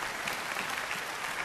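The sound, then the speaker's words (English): A crowd claps steadily, a dense, even wash of many hands with no gaps, sustained at a moderate level for the whole moment with no voices standing out. “Come on, let's clap for the guy.”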